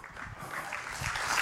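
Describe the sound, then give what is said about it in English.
An audience breaks into applause, a dense wash of many hands clapping that holds steady and swells slightly louder toward the end, with no one speaking over it. “Yes, that's absolutely worth applauding.”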